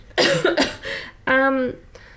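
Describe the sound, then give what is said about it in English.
A fairly loud cough in a few rough bursts from a person whose throat is closing up, followed by a brief voiced, throaty sound, then quiet. “For some reason, my throat's closing up. I'm going to cough.”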